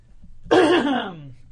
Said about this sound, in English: Yeah, and you can tell from my voice that I'm getting over the convention crud. Oh. Ooh. Yeah, I'm going to clear my throat. Hold on one moment.